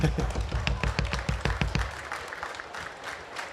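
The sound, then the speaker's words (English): An audience claps for the first winner of a prize draw giving away free stuff from King's Comics: a brisk burst of sharp, fairly steady claps for about two seconds, then thinning into a softer, scattered patter as the applause fades. “Give him a clap.”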